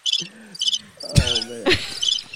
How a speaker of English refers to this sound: All right, with the crickets, damn it. Longest cricket.